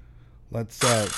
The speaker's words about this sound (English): Let's get out the saw. Let's get some power tools going here. And let's... whoops. I think that's a power tool.